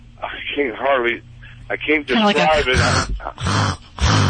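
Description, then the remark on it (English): A person vocally imitates a gasping, snorting sound like gagging, a run of rough, strained breaths and throaty gags, fairly loud, with noisy bursts growing harsher toward the end. “No, it's almost like she's gasping for air.”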